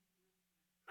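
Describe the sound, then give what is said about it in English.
Near silence gives way to a single sudden, loud sneeze at the very end, a sharp breathy burst that cuts off abruptly. “Bless you.”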